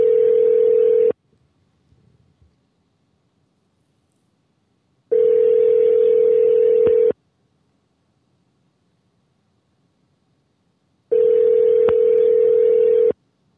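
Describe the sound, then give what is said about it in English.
A phone line's ringback tone on a Google Voice call: three long, steady buzzing rings separated by several seconds of silence, heard through a thin telephone connection with no one speaking. “It's ringing, but the other weeks it hasn't been, like, you know, it's been saying this isn't working.”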